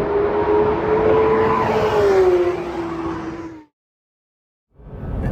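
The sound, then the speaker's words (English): A Porsche GT3 RS engine screams at high revs, loud, its pitch climbing then dropping as the car accelerates hard on a racetrack lap through La Source toward Eau Rouge. The sound cuts out abruptly for about a second, then the roar returns. “The engine screaming and the car just rocketing forward.”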